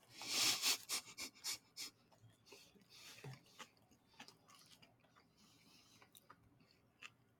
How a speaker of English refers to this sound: Do you like our chewing sounds in the mic? That's some ASMR for you guys.